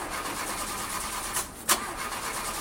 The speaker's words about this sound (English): Car not starting? Yeah, just started doing this and I don't know who to trust to take care of it.